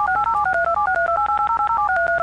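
A rapid string of touch-tone telephone dialing beeps for an international phone call, about fifteen short dual-pitched tones in quick succession, clear and steady with no talking.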